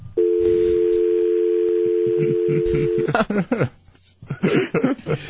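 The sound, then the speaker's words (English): A steady telephone dial tone hums for about three seconds, then cuts off as a voice starts talking over background chatter. “How long will you talk to a dial tone?”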